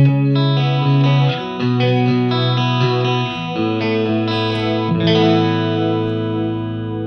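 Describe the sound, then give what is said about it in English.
Electric guitar strums sustained chords through a chorus pedal on its less intense setting, with depth about halfway, speed fairly low and chorus at about 3 o'clock. The shimmering, slightly wavering tone moves through several chord changes, loud and steady with no talking. “About 3 o'clock on the chorus.”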